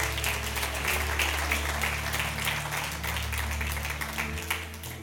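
A crowd applauds steadily for several seconds, a dense wash of many hands clapping, with a low sustained hum or organ-like tone underneath throughout.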